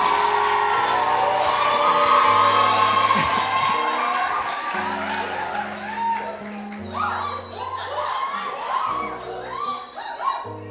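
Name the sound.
audience clapping and cheering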